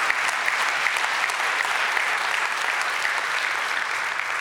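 An audience applauds steadily, a dense, even wash of many hands clapping at a constant loudness throughout, with no voices rising above it.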